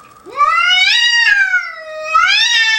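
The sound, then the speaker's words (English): An indoor cat lets out a long, loud, wavering yowl at a bobcat sitting on the porch looking into the house, rising and falling in pitch with a brief dip before swelling again, with no talking. “looking into somebody's house, and the indoor cat's flipping the fuck out. That's what you hear.”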